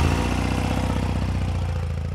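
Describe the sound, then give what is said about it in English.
A motorcycle engine idles loudly and steadily, a low, even rumble with a faint mechanical clatter running through it and no talking. “Now, let's get this thing fired up.”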